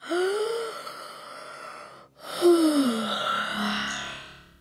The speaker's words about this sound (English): It opens with a big yawn